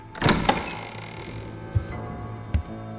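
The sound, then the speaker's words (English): A door is flung wide open with a sharp rattling burst, followed by two dull, low thuds spaced about a second apart, with no voices. “Reasoning that the devil should prefer to go where he pleased, without invite or permission, I flung the door wide.”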